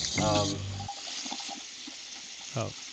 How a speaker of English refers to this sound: Are you boiling water on your side of the? No, I was running my sink.